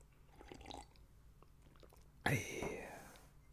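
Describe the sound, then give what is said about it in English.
Someone takes a quick sip of water: soft, faint mouth and lip noises, then a sudden louder slurp and swallow that fades over the final second, with no talking. “Quick sip of water, boss.”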